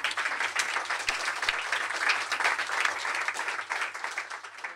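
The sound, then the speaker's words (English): A crowd applauds steadily for about five seconds, a dense, even wash of many hands clapping at once with no voices rising above it. “Just while we gather ourselves, just I think we should just do another round of applause.”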